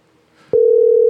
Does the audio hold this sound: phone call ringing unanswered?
yes